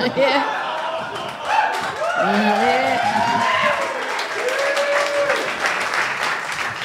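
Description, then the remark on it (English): Steady audience applause with dense, continuous clapping for several seconds, while voices call out and chatter over it throughout. “Oh, content girl's applauding, we can see that.”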